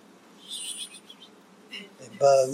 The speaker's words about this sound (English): Bugs. Flies everywhere. Flies. I mean, you see a dead carcass, you see a bunch of flies, but these flies covered the sky.